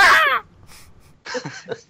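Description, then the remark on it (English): A person's voice imitates a bald eagle cry with one loud, high, strained screech that cuts off quickly, followed after a pause by quieter, rough, croaking vocal sounds. “A bald eagle's cry? What are you talking about? Okay, that was more of a gut punched cry, but we get where you're going.”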